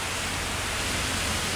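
Steady, dense hiss of heavy rain pouring without a break, a broad wash of sound with faint low rumbling underneath and no voices.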